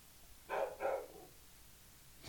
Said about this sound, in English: Sorry for my dog, everybody. Next season, there's going to be no dog sounds in the background, and we're going to have video.